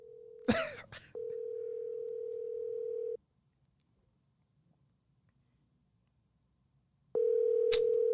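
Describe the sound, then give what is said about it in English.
An outgoing call's ringback tone as someone calls their dad: a steady electronic hum sounds for about two seconds, then a long pause of silence before the next ring begins. A brief handling clatter interrupts near the start. “Where are you calling? I was calling my dad.”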